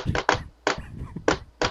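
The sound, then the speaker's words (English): Five loud knocks on a door in an uneven pattern: two quick raps, a pause, then three more spaced apart, with no one talking. “right after Jed knocks on the door”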